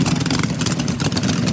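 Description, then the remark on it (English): A group of bikers ride small, not street-legal off-road motorbikes, the engines buzzing and revving together in a steady, loud drone, the pitch wavering slightly as throttles shift, with no voices over the noise. “They say by biker thugs, but they're literally like driving these little like not street legal motorbikes.”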